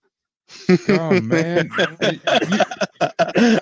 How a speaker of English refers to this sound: You know that was a good laugh when it made him cough even harder.